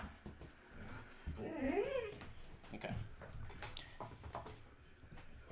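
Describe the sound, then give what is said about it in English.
A female dog named Miley barks with a drawn-out, wavering whine-like cry, followed by a few shorter, sharper yelps at moderate loudness. “She barking”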